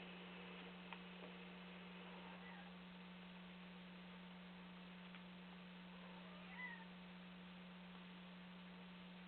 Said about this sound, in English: My cat is complaining. She does not like this very much.